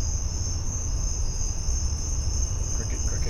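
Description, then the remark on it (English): A steady, shrill chorus of crickets chirping continuously, fairly loud, with a low background rumble underneath and no voices. “This is where I will put the crickets. Yeah. Very loud cricket. Really loud crickets.”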